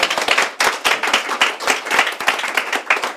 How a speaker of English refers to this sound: And finally, a big round of applause to yourselves for turning out and having just such great conversation and questions. So thank you very much.